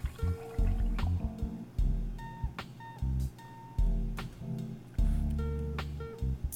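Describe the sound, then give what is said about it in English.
Liquid glugging and splashing as beer is poured into a glass, in uneven bursts with short pauses between pulls, bright fizzy transients over a low burbling fill. “This is a way better pour than my last episode as well.”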